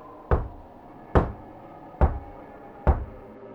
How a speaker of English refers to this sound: While coming home, I found a door. It lay upon the grassy floor. I left it there, continued walking, until I heard the faintest knocking.